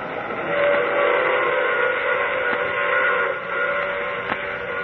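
A steam train whistle wails loud and steady for several seconds, its chord-like tone holding with slight shifts, heard alone with a thin, somewhat muffled quality and no voices.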